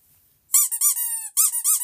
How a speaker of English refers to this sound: What was that? Oh, that was my nerd alert, new word alarm going off.